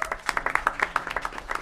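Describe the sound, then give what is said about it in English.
A short burst of audience applause at a forum for Mayor Kelly Garrett, many hands clapping in a dense, irregular patter at a steady moderate level, with no voices over it. “And we have already introduced your illustrious mayor, Mayor Kelly Garrett, so give her one more applause.”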